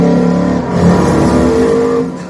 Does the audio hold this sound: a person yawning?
no